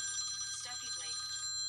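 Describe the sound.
A phone rings with a steady, high electronic trill that runs the whole moment, clear, while a faint voice murmurs briefly underneath.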